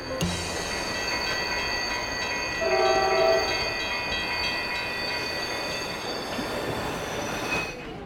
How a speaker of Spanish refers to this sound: The train screeches to a halt at the station, and the inspector quickly turns to you.